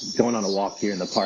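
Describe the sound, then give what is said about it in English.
A steady, high-pitched buzz of cicadas drones continuously in a park while a man talks over it outdoors. “That's the sound of the cicadas.”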